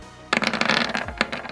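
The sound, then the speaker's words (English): A quick burst of clattering rattles as dice tumble across a hard surface for an attack roll in a tabletop game, with a sharper knock near the end before the rolling settles on a 3. No one speaks. “3 on the dice.”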